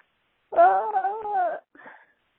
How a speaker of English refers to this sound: Sorry, my cat's also crying about this in the background.